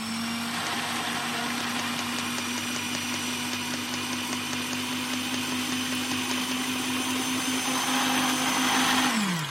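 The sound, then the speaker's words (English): A blender whirs steadily at high speed for several seconds, its motor hum joined by a gritty, rattling crunch as dry cornflakes are pulverized into dust, then the pitch drops as it switches off. “Okay, let's pop what's left of the cornflakes in the bowl. We're going to try putting them in the blender.”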